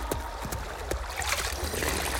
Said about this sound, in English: And I can hear the water! Oh man, I didn't realize how thirsty I am, too. There it is. A river.